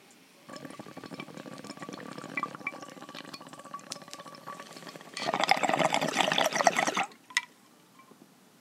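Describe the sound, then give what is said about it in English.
A steady gurgle of water bubbling through a bong as someone takes a hit, lasting several seconds, swelling into a louder, rougher burst of bubbling before stopping abruptly, with a faint glassy clink afterward. “but before we continue, you know, we got to take a rip for the very special 420.”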